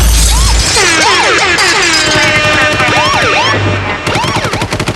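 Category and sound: sound effect, gunshot sound effects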